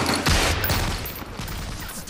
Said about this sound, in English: You can talk about it intellectually beforehand, but once the gunfire goes and people are screaming and yelling,